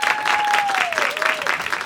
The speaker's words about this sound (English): It's stand-up week, so please give a big round of applause for our next comedian